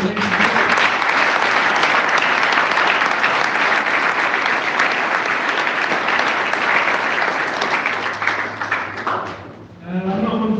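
A large crowd applauds the volunteers who had been helping out all day, clapping steadily for about nine seconds, dense and sustained, then the clapping tapers off as a voice begins speaking near the end.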